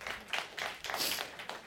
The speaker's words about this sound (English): I love that you applauded. That is something to applaud about. It really is.